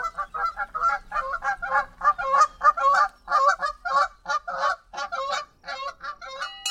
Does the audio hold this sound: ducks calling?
yes